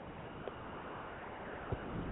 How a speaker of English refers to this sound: It's windy, but it's not cold. I'd say it's in the 60s or so. A little windy, but, you know, otherwise not too bad.